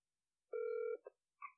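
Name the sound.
phone call ringing tone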